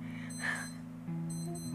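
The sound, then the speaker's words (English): A small electronic wristwatch alarm beeps in quick repeated bursts, thin and high-pitched, over a steady low hum. It continues without pause, with no one speaking. “How long is that alarm?”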